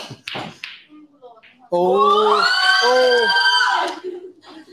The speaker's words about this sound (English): Oh, that's a bit of a high-pitched scream, isn't it? Yes, we like the girls screaming.